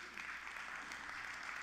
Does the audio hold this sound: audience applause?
yes